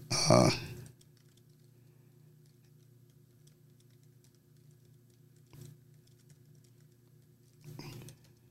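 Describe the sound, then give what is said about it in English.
Faint, scattered key clicks tap away over a steady low hum as someone types on a computer keyboard to post something online, with a louder thump at the start and a couple of soft bumps later. “Give me one sec, because my typing skills have gone in the trash over the past couple of years.”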